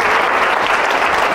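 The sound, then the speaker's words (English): An audience applauds steadily, a dense, loud wash of many hands clapping at once with no breaks, carrying strongly through the mid and upper range. “And thank you for the applause.”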